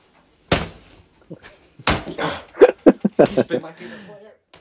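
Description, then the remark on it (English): Two sharp thumps from a fist punching an older Everton football jersey, number 30, followed by a flurry of quicker hits mixed with excited, indistinct vocal sounds. “He is punching his Everton Richarlison jersey”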